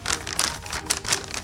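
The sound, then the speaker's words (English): Paper crinkles and rustles as a note buried beneath chocolate gold coins is picked up, a short run of crisp, crackly handling noises with no one speaking. “Look, a note is buried beneath the coins. Let me grab it.”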